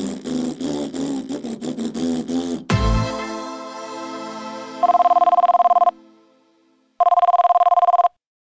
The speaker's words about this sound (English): Where are you, Shyster? Answer your stupid phone, you dumbhead.